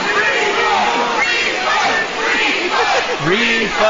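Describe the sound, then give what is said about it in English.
A dense crowd at a band's concert somewhere in Ohio roars and cheers continuously, with overlapping shouts and yells rising out of a loud, sustained wall of voices. “Like, the whole video is just people cheering.”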